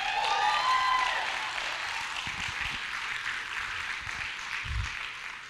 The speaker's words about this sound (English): I'm glad you gave me like a little golf clap. That's cool because it ain't for me. It's for him. If you think he deserves a little golf clap, good for you.